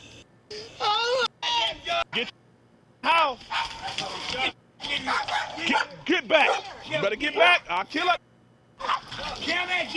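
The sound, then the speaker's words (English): A big dog barks and yips repeatedly in rapid, uneven bursts, loud, with short pauses between volleys and a few high, whiny yelps mixed in, heard in a played video of police at a property. “Look how big that dog is. Look at the dog.”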